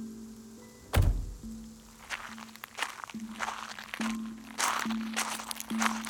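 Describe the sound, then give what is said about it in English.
A car door shuts with a heavy thunk, followed by a steady series of footsteps crunching along at a walking pace toward a house's front door, with no talking. “Jim swept his hair out of his eyes and opened the car door.”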